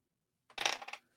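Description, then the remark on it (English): A dropped die clatters and tumbles across a hard surface in a quick burst of bright rattling impacts lasting about half a second, fairly quiet, with no one talking. “Shit, I dropped one of the dice.”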